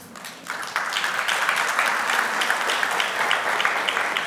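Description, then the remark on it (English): Audience applause swells in within the first half second and holds steady, a dense wash of many hands clapping at a fairly loud, even level with no voices over it. “And you can give yourself a round of applause for that.”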